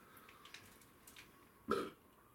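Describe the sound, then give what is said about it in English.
A single short, forced burp erupts after a quiet stretch, a brief guttural croak that cuts off quickly. No one speaks. “I'm trying to like muster a burp up.”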